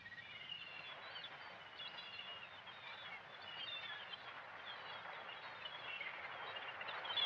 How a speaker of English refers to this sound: The herring gull is the commonest gull over most of eastern Canada. It can be identified by its black wingtips and pink legs.